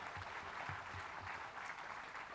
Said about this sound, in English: So a huge, huge round of applause for all of you here and out there across the country who have been doing this for years.